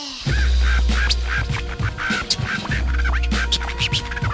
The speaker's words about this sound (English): Sometimes a parrot talks.